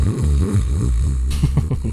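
A person snoring: a loud, steady low rattling rumble that carries on throughout, shifting slightly in tone partway through, with no talking.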